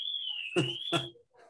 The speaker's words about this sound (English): Sorry, everyone, if you're hearing that alarm. Oh, geez.